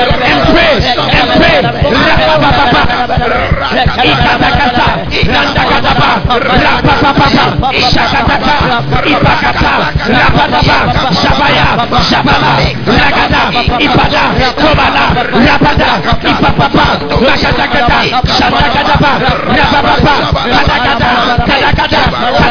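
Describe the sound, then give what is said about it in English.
An audience prays aloud all at once, many overlapping voices forming a loud, steady roar of fervent babble with occasional shouts, sustained without pause. “Now listen, as we were just praying, the Holy Spirit is telling me that we should pray against the spirit of pride.”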